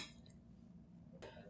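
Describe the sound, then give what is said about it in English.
A quick, bright clink of wine glasses touching in a toast, fairly quiet, preceded by a faint tinkling and a low background hum. “Cheers. Cheers.”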